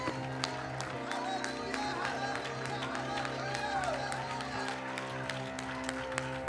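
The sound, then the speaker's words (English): A church audience claps and cheers in praise to God, a dense, steady wash of hand claps with sharp individual claps popping through, voices shouting and singing underneath, and a sustained organ-like tone droning throughout. “Somebody clap your hands, lift up your voice, and give God some raucous praise in this place right now.”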